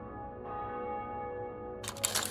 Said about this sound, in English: she still faces acute damage to her heart and cannot escape the memory of the bells ringing.